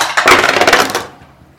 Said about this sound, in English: Actually, at this point, because we are at a skill thing, I'm going to have everyone roll initiative.